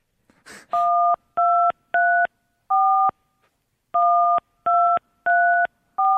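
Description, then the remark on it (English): Telephone keypad tones beep out a short melody, Frère Jacques, eight clear dual-tone notes in a steady rhythm with a brief pause halfway, preceded by a faint click. “We've got 9 possible little notes. Give me one each.”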